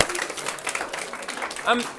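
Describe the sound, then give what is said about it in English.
A crowd breaks into steady applause for a group of volunteers, a dense wash of overlapping claps at an even level for about two seconds, with murmuring voices mixed underneath. “Give it up for these people. Give a round of applause.”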